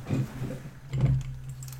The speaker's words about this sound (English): The phone went off, yeah.